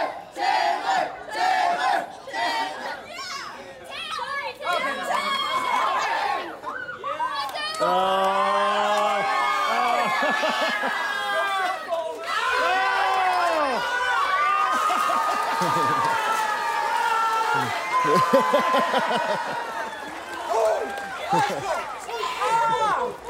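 A crowd at a church picnic on a freezing day cheers and whoops loudly and continuously for their youth pastor, with many overlapping shouts and high-pitched yells rising and falling throughout, dense and energetic from start to finish.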